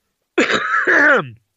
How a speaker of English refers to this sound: And all about how you don't cough into the microphone. You should mute that. But we are not professional here.